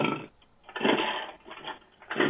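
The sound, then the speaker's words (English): A chainsaw-like motor buzzes in surging bursts, revving up and dropping back several times with a harsh, rasping mechanical tone and no talking. “Oh, my God, Mikey, your arms have become chainsaws!”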